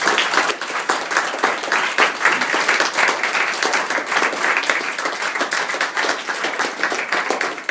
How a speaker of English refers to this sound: I think probably the best way to do it is just give them a great big round of applause now. That'd be great.